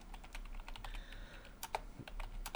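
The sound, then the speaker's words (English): Rapid, uneven clicking of keys on a computer keyboard as someone types in a search, fairly quiet, with a few sharper louder keystrokes near the end and no voices. “I'm typing all this bullshit in and it won't even let me fucking look for it.”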